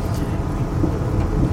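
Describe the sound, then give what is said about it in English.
A train rumbles as it comes onto the main line and gathers speed, heading south towards Southampton Airport: a steady, loud low-pitched roar with a faint airy hiss above it, continuous throughout with no voices. “The train has just come onto the main line at the exact same time that I've just taken a bite out of this flapjack.”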